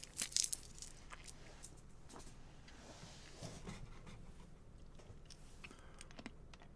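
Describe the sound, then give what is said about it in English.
Crinkly wrapper of a Halls cough drop rustling with a sharp burst near the start, followed by steady crunching and chewing of the cough drop that continue softly throughout, with no talking. “All right, guys, you might have some like crunching noises. Got to pop a Halls here.”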